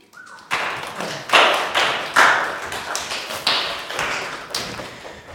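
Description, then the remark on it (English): An audience breaks into steady applause after a brief tonal sound at the start, many hands clapping at once in a dense, continuous wash that stays loud with slight surges until the end, as a guest speaker is invited up to share. “Let's clap for him, shall we?”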